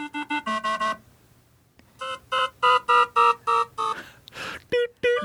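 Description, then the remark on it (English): A medical cardiovascular caution (emergency) alarm, from a musician, sounds: a quick burst of short, buzzy electronic beeps, a brief pause, then a steady run of louder pulsing tones, ending with a few more clipped beeps. “This sound that you're hearing is a cardiovascular caution alarm or an emergency alarm.”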